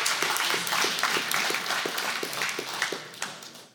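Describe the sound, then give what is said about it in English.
A church audience breaks into steady applause for the greeters, many hands clapping together in a dense, sustained patter that fades slightly toward the end, with no voices over it. “Clap for the greeters.”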